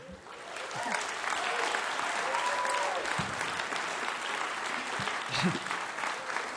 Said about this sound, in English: That was the applause from all the people sitting backstage listening. I love that about this show. Everyone comes and sits backstage and listens to everybody else's set, and it's part of what makes Mountain Stage so special.